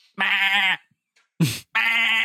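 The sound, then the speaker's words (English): A sheep bleats twice, each call long, wavering and loud, with a short harsh rasping noise between them, and no one talking. “And then it's just, you just hear a sheep.”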